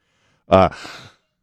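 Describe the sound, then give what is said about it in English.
A single loud sneeze: a short voiced intake bursting into a breathy, hissing expulsion, over in under a second with no talking around it. “Sorry, I just sneezed.”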